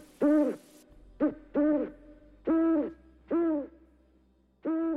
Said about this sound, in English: In moments between the laborious breathing, I was sure I heard the owl start up again.